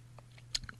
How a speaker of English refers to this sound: Now, I'm going to pause for a moment here, take a quick sip of water. You know, I'm not on film right now, so you can't see me do it, but just imagine that I'm taking a sip of water because my throat's really dry today.